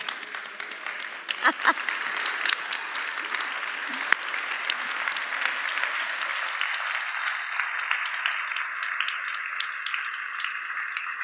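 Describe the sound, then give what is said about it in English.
A crowd of people standing up to clap for themselves applauds steadily, a dense wash of many hands clapping at once that holds at an even level throughout, with a few sharper claps and faint voices mixed in. “Okay, stand up and clap for yourself right now.”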